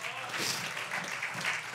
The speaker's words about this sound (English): Can you give the Lord a hand clap of praise right now?